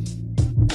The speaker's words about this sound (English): you just cough, man. I need my Clorox out. Yeah, wipe your computer down, boy.